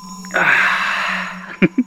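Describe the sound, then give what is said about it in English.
A single big, breathy yawn drawn out for about a second, fairly loud, fading off and followed by two brief, sharp mouth sounds. “It's making me want to have a big stretch and a yawn.”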